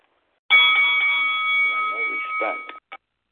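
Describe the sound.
A single loud bell rings steadily for about two seconds, a bright sustained tone, with muffled voices faintly beneath it, followed by a brief clipped blip.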